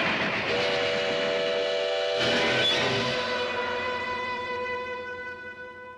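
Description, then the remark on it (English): A train rumbles past with a loud, sustained whistle blaring over it, then a sharp burst of clattering noise before the whistle fades slowly. No one speaks. “Train. I don't want to get back on that.”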